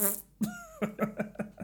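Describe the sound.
A voice makes a blubbery raspberry-style fart noise with the mouth: a buzzy opening, a short drawn-out tone, then a quick run of sputtering bursts, fairly loud.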